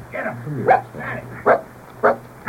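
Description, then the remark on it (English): A small dog gives short, high yappy barks, about three sharp bursts spaced roughly half a second apart, with a steady low hum running underneath. “Was he, like, wagging his little tail or whatever it's left he's of it?”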